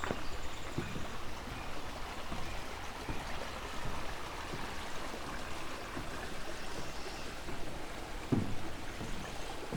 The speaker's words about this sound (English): Just crossing over Bronte Creek at a spot where it's very narrow.